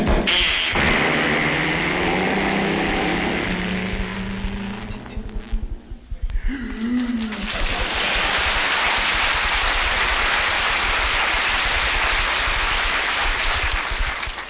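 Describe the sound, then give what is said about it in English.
A loud four-speed hot rod engine revs with a rising whine, cuts out briefly, then roars back as a steady, rushing blast of engine noise. No one speaks. “Four speeds forward. This is a hot rod duck hunter.”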